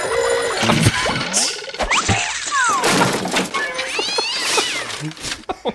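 A cat yowls and meows loudly, its wavering cries mixed with clattering, breaking and thudding sounds throughout the commotion.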